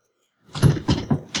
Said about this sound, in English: Let's open the door, see what's going on out here.